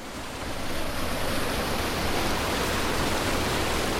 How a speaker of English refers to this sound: He also runs this local irrigation system. So when you open those head gates, the water comes over the top of that and past in there.